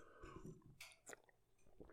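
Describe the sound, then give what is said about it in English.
Mouth sounds of someone sipping water, with a couple of short slurping bursts and soft swallowing noises, quiet and with no talking. “I'm just gonna take a sip of this water while the crowd applauses.”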